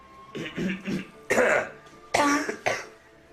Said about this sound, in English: I have a cough right now. So mine might cough this episode.